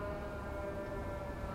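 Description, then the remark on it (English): A steady, sustained siren wail on a New York street fills the whole stretch over a dense bed of street noise, with no pauses or speech. “The sound of sirens.”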